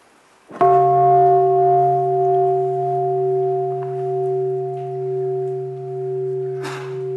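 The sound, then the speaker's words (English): A single bell is struck once and rings on with a deep, sustained hum that slowly wavers and fades, a rich tone lingering for several seconds with no voices. “So let us listen to the first sound of the bell, and after that, the first question.”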